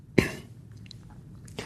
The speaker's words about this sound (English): Then aware of a teeny cough, you'd be aware of a little cough.